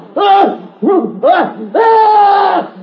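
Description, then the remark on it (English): A horrible, loud scream: three short arching cries in quick succession, then one long sustained high-pitched shriek that holds steady before cutting off. “That scream! It was horrible!”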